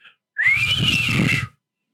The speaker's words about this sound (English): Let me just do one of those whistles that people do when they're dead impressed, because 90 is a lot of episodes. Here we go.